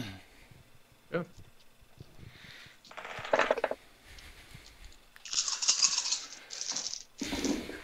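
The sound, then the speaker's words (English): Dice rattle and tumble in a few separate bursts of clattering rolls, with a louder, longer shake near the end, over quiet background murmur. “So I will make a couple of rolls.”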